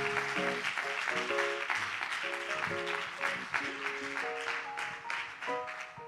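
Steady, sustained audience applause fills the whole stretch, dense clapping at an even loudness, with held musical keyboard notes playing underneath.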